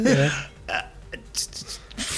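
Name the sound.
burp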